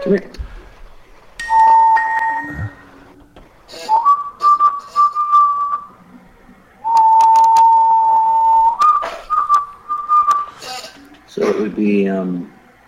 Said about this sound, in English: Oh, he doesn't know Farmer in the Dell. He's working it out for you. Gotta tip him. He whistled Farmer in the Dell for you.